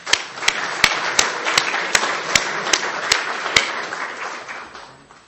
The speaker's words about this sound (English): Give yourselves all a big round of applause.